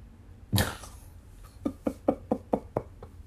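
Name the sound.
knocking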